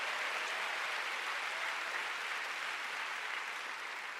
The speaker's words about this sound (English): Come on, give the Lord a big hand. You are part of this miracle. You are here. Come on, give the Lord a big clap.